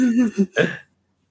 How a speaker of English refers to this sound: What did you do? Oh, I yawned. I laughed at the same time.